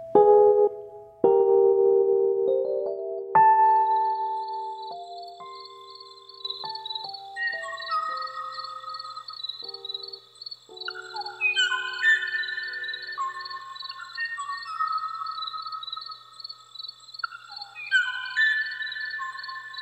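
A recording of the song of the kawayo bird, a species last sighted in 1985: clear, pure whistled notes that step up and down in pitch, then layered chirping phrases over a steady high, shimmering trill, moderately loud.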